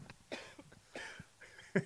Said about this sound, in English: Coughing? You were hacking up a lung there.